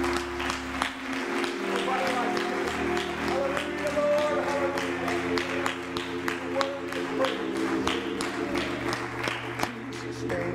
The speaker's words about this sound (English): You may be seated. Well, praise God. Let's just give a hand clap of praise to the Lord real quick.